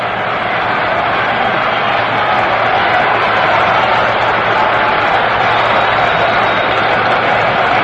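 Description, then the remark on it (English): A large crowd at a baseball game, quiet a few moments before, roars and cheers in a dense, continuous wash of noise, loud and sustained throughout with only a slight swell in intensity. “Crowd that was very quiet a few moments ago is really starting to whip it up now.”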